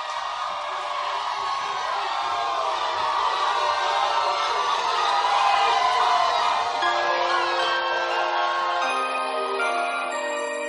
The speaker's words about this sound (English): And I want you to clap your hands and welcome my sister